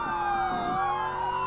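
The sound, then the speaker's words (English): Wailing sirens from several FDA cars chasing along a highway overlap, their pitches sliding and crossing in a steady, loud, continuous blare with no talking. “Yeah, not even those FDA cars chasing us.”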